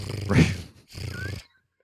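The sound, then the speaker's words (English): A person imitates a cat's purr with two short, throaty rumbling bursts separated by a brief pause, moderately loud, with no other talk. “Can you, any of you guys purr?”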